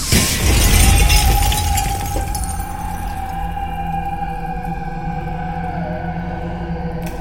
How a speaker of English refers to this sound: With one final shudder, the mirror exploded into a thousand bits of glinting glass, the shards curling into smoke where they tumbled across my face as a collective shriek raced into the corners of the room and echoed to nothingness.